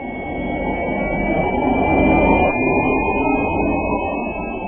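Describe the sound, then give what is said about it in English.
A Nissan electric car's forward-motion pedestrian warning sound, chosen from 100 sounds developed with acoustic experts, universities, a Hollywood sound company and the National Federation for the Blind: a steady, futuristic humming drone with a thin high whine on top, held fairly loud and unbroken for nearly five seconds, with no voices. “And from that list, this sound was chosen for going forward.”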